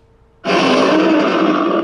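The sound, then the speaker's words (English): A person does a loud, raspy imitation of a lion's roar, meant as Simba. It bursts in abruptly after a brief quiet moment and holds steady for about a second and a half, with no talking. “That's a terrible roar.”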